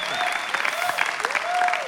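A large audience claps continuously and loudly, a dense, steady wash of applause with a few tonal whoops or whistles rising above it, no talking.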